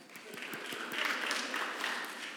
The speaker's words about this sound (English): Can I quick clap for the people on the sound desk?